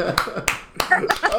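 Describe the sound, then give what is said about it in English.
A few people clap their hands in a short, loose burst of about six sharp claps spaced irregularly, with some voices murmuring underneath. “Round of applause for you.”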